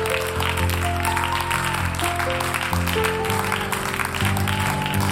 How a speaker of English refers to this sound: Why don't you give God a hand clap of praise?